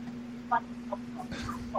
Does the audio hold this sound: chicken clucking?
yes